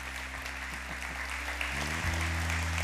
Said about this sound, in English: Isn't that great? Give him another hand of applause. Great. Way to go, guys.